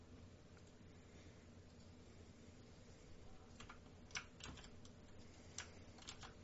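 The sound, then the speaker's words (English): Irregular clacking of fingers typing on a computer keyboard, with sharper keystrokes in the second half over a steady low background hum. No one speaks. “Okay, careful on the typing.”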